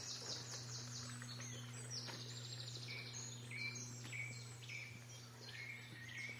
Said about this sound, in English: Blackcaps, there's a wren.